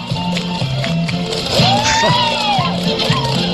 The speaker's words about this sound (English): Sounds like must be having a party in your room